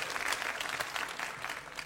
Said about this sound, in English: OK, it gets a round of applause.